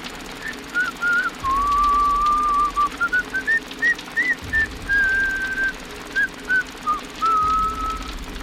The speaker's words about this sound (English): shrugged and walked into the darkness, whistling again.